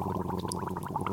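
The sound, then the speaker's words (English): Steady gargling as liquid bubbles and rattles in someone's throat, a continuous wet burbling with a fast irregular pulse, heard on its own without any talking. “Now, can you try gargling a little?”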